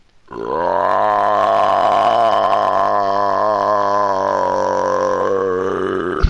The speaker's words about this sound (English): So I take a couple of steps, so I'm within range of the goblins, and I just unleash this horrendous burp, this massive belch, in the direction of the nearest goblin. Mm-hmm. This is huge belch.